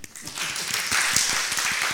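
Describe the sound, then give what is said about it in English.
Steady audience applause for visitors who came to a church ministry, a dense wash of many hands clapping at a fairly loud, even level, with a few sharper individual claps standing out through the two seconds. “So give them big clap.”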